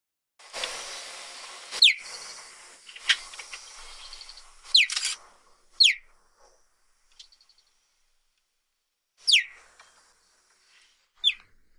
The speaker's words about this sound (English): That is, believe it or not, a cheetah. And that's the normal sound a cheetah makes. Can you imagine walking through a Saharan grassland and hearing that?